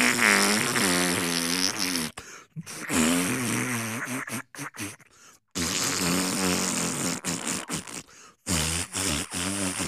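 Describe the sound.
Long, buzzy fart noises, seemingly blown with the mouth as a mock Emmy acceptance speech, come in several loud bursts with wavering pitch and brief pauses between them. No one speaks.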